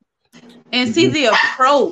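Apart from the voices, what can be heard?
dog barking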